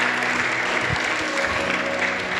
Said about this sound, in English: Church, can we just clap every person all over this room that gave their life to Jesus as Lord and Savior?